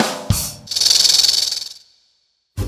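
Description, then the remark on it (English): A snake hisses loudly, a sustained breathy hiss lasting about a second with a slight pulsing flutter before trailing off into silence. “When a snake feels threatened or scared, it sticks out its tongue and makes that hissing sound.”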